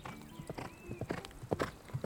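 Horse hooves clip-clop in a quick, slightly uneven rhythm, about eight distinct knocking hoofbeats at moderate loudness, with a faint thin tonal whine drifting in the background early on.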